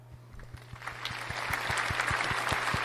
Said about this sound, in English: Do we have an applause or something sound we can play for that? Let's give an applause.